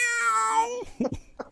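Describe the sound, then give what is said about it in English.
A single drawn-out, loud cat meow, its pitch sliding slowly downward for almost a second, followed by a few short, softer vocal chirps. “What if one day that we don't realize, but our extensions are actually a cat and they just meowed.”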